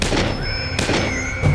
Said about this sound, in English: He started convulsively at the gunshots from inside the bank.